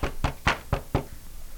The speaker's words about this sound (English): But yeah. I really, you know, again, knock on wood here.